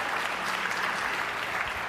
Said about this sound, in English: Give a hand clap to our staff and our staff pastors and all those that serve.